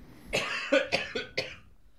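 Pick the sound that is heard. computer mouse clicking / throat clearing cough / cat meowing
throat clearing cough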